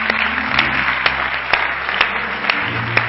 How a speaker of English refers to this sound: Why don't all of the home folks give our guests a good hand clap?